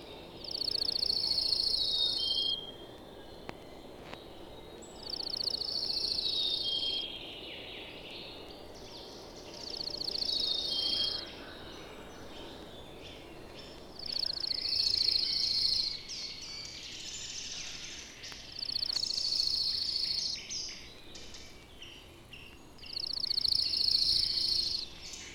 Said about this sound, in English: Shorter, faster, and more musical than chipping sparrows are the simple trills of a slate-colored junco.